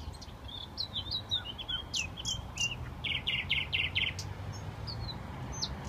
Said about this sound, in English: That's it. That's nice. Isn't it beautiful? I loved it. I was like mesmerized by that bird.